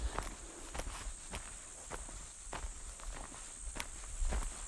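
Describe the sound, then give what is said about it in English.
Cicadas in a still, humid forest with little breeze keep up a steady, high-pitched buzzing drone throughout, while soft crunching footsteps land at a slow, uneven pace over it. No one speaks. “It's just hardly anything apart from, oh, cicadas.”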